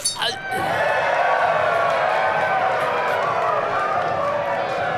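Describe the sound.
A large crowd cheers and roars, a dense wash of many voices that swells up after a brief thump and holds loud and steady to the end.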